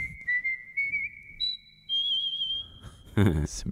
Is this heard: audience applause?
no